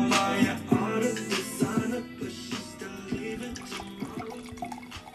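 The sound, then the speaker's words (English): Liquid being poured into a glass, fairly loud, with a steady gurgling stream broken by several short glugs and splashes over about five seconds. No one speaks. “Pour it up, hey. Cheers.”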